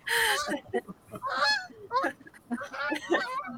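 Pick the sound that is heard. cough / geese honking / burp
geese honking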